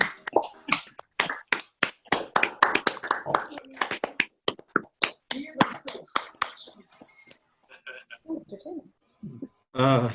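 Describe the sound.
Scattered, uneven applause from several people, a patter of sharp claps and snaps over a call for about seven seconds, fading into a few murmured voices and brief chatter at the end.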